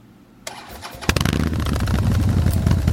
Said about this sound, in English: Together, we are navigating the path of responsibility and duty, knowing that our actions speak louder than our words. And that includes the thunderous roar of our bikes.